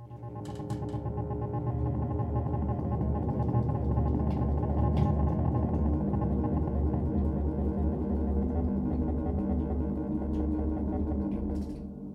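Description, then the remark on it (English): An ondes Martenot plays a rapid tremolando on its keyboard to emulate chords, its fast-wavering electronic tones blurring together into a buzzy, chord-like sustained sound that holds steady for about twelve seconds, with no one talking. “You can emulate the sound of chords by doing very rapid tremolando.”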